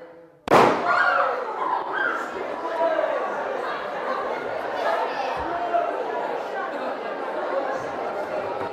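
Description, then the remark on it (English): A gas-filled balloon, touched with a red-glowing hot tool, bursts into flame with one sharp, loud bang near the start. A crowd of voices breaks into continuous excited chatter right afterward. “Okay, so that was a bang, but not really a very good bang.”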